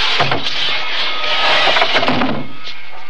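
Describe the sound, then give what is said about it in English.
A heavy wooden box, marked 'this side up with care', scrapes and bumps as it is pushed off and dragged over to a loading platform, a continuous rough grinding with scattered knocks and creaks lasting a few seconds, fairly loud, with no voices. “I'll push it off and drag it on over to the loading platform.”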